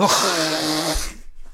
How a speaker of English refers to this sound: You want some Mucinex? No, I just need to blow my nose.